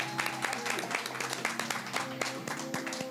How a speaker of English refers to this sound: Everybody think we should give this dude a round of applause.